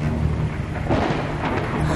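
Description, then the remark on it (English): A deep, rolling rumble of thunder from an approaching storm fills the scene, steady and loud with broad low-end roar and hissing rain-like texture over it, no voices present. “At this moment, we are about to encounter a storm.”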